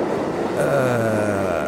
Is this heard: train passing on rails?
yes